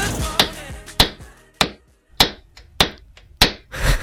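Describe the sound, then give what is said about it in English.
Six sharp, evenly spaced hammer strikes ring out about every 0.6 seconds, each a loud metallic whack with a brief ringing tail, with no talking. “That would be a hammer sound effect because it is time for hammer time.”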